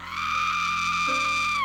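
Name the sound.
woman screaming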